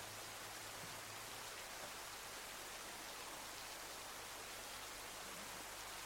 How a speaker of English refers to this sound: All there is the sound of the rain gently coming down.